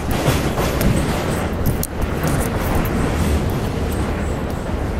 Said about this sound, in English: Gotta cross the street. 1 second. Train's coming. Hold on.